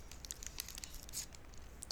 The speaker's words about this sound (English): Is it, so, well, that's a lot of noise. Is that both wrapper and crunching noise? Yes. Oh, okay. Is it a granola bar? No. Is it a bar of some kind? Kind of. Is it a candy bar? No.